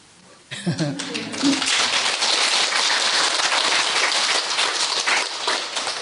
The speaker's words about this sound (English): Why? Why are you clapping?